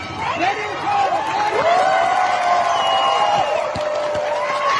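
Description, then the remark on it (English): A crowd in Iran cheers and shouts steadily as women take off and burn their headscarves in public, with long, wavering high cries rising and falling above the din and a few sharp knocks near the end. “You can hear women doing that in front of a crowd in this clip.”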